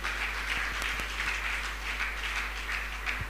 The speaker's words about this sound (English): Church, shall we once again clap our hands for Jesus?